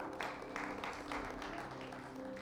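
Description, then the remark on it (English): Scattered applause from an audience, a dense patter of hand claps that stays fairly steady and moderately loud throughout, with a faint murmur of voices underneath. “You can clap. It's fine.”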